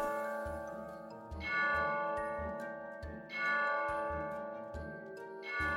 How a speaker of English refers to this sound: The clock struck 9.